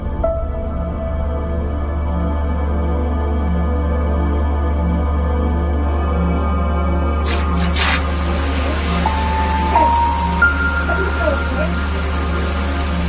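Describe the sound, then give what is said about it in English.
A low steady hum runs alone at first, then partway through a shower bursts on with a loud, continuous hiss of spraying water that keeps running, with faint squeaky tones over it. “I'm going to take a shower.”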